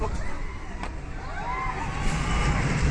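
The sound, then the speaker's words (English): An amusement ride vehicle brakes with a steady, loud rushing rumble, a brief squealing whine rising and falling partway through, and faint crowd murmur underneath. “Love how gentle the brakes are on this ride.”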